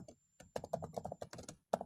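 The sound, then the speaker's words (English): Typing on a computer keyboard: a quick, uneven run of crisp key clicks with short pauses between bursts, and no voices. “You probably don't need to know this, but it makes typing really painful.”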